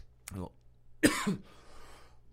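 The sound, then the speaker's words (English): A person on air coughs twice, a short harsh burst followed by a louder, rougher cough about a second later, with a brief breathy tail and quiet background noise around it. “Oh man, nothing like listening to somebody cough on the air, huh?”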